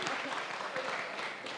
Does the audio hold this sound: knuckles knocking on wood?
no